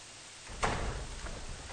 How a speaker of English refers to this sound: He comes to the house of Elisha and he stands at the door. And the door opens.